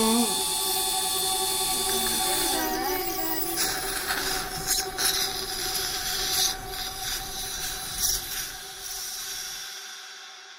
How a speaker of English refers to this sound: Short of fingernails being dragged down a blackboard, the sound of a dental drill is possibly the most uncomfortable thing I can think of.